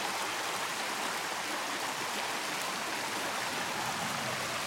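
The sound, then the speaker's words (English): A steady, continuous rush of flowing stream water, even in level throughout, with a bright hissing texture and no voices or other sounds. “So can you hear the water? So soothing, so soothing.”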